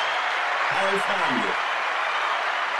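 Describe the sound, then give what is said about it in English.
A played applause sound effect fills the whole stretch, a dense even clatter of clapping at moderate loudness, with a brief voice rising over it near the start. “Got my applause late, but it's there.”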